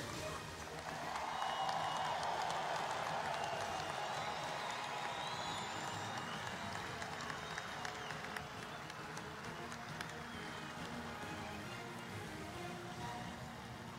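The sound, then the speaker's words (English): Steady, dense applause from a large crowd at a ceremony honoring Dave Stewart fills the space for over ten seconds, with scattered cheers and whistles rising above the continuous clapping. “Once again, let's have a big round of applause for Dave Stewart.”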